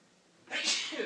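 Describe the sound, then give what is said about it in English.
A single sharp sneeze bursts out after a moment of near silence, loud, with a bright hissy spray that trails off briefly. “Bless you.”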